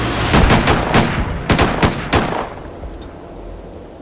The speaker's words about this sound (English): By shot, he means 8 rifle shots rang out, and 2 bullets hit Kenrex, killing him instantly.